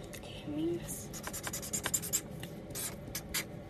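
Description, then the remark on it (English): Rapid scratchy pen scribbling over a drawing on paper, continuous, with quick irregular strokes over a soft background hum. “Okay, I just scribbled over it.”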